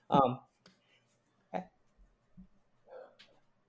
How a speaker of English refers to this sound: Sneeze. After I sneeze. Sorry. Bless you.